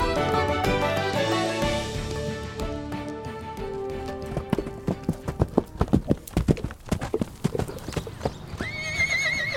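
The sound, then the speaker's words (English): The hooves of a horse named Plato clip-clop in a quick, steady rhythm, clear, following a stretch of sustained music, with a high whinny-like tone near the end. “Oh, and I'd like to borrow the horse.”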